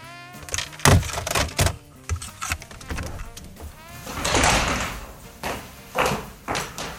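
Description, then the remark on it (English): A door is opened: a few sharp knocks and latch clicks, then a longer rushing swing, ending in soft thuds, with no talking. “I'll get the door, Foster.”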